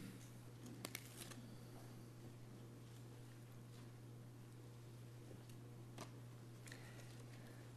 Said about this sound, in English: I love the sound of rustling pages.